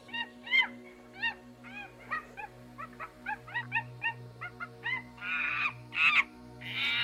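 A small chimpanzee calls out in a rapid series of short, rising hoots that build into loud, harsh screeches at the end, alone over a steady low hum.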